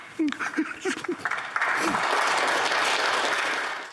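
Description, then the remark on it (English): A few brief voices ring out, then an audience bursts into dense, steady applause for a man who has just finished his speech, holding loud for a couple of seconds before cutting off. “The applause? The clap.”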